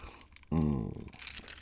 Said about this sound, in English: So is me taking a slurp off of my diet sweet tea. My Kroger's diet sweet tea.